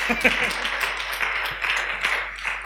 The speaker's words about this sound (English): The senior pastor wants to say something. Can we put your hands together for him? No, I actually think we should clap for him.